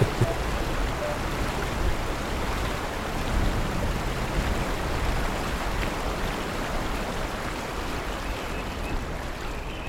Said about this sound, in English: We set up our tents at, you know, this deserted campground and listen to this big river roll by